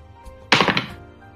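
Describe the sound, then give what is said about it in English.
A d20 die is rolled and lands on 13: a sudden burst of quick, hard clattering knocks lasting about a third of a second, then fading as it settles, with no voices. “Can you give me a d20 roll, please?”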